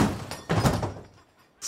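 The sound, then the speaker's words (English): A door on a ship being broken down: a few heavy thuds and cracking impacts in quick succession, fading into a short rumble before a burst of hiss at the end. “This looks like a big important door. Break it down.”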